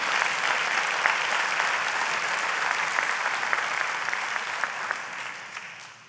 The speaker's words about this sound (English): Hallelujah. You could like clap right there. That'd be good.